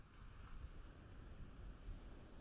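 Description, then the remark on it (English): Steady, broad roar of surf on a windy beach with low rumbling wind buffeting, continuous, no distinct individual wave crashes standing out, and no voices present. “I think perhaps the whispering and the chatter in the background and the waves could be a nice mix.”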